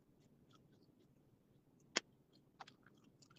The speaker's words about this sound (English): How they chew the gum? You know they mess up, right? I hate when people chew gum like that.